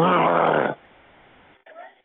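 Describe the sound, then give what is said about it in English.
A person growls loudly over a recorded phone line, a harsh, throaty rumble lasting under a second, then a pause before a brief, fainter vocal sound. “Are you just going to keep growling at me every time I say something?”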